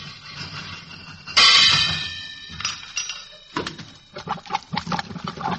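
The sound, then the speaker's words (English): A loud metallic bang rings out with a sustained clanging tone, followed by several lighter knocks and rattling clatter against a plumbing pipe joint, struck to fix the plumbing, with no voices. “If it's the joint, a couple of bangs might do it.”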